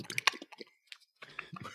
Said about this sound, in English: Buff chews through the floor now.